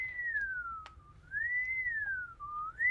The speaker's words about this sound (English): You can't just whistle.